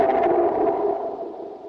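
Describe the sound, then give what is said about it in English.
A bird with its beak stuck into a hole in a cave wall roars to scare others off: a loud, sustained roar with a low, droning tone rolls on for nearly two seconds, heavily echoing and fading only slightly at the end; no one speaks. “The bird stuck its beak into the hole of the cave wall and roared.”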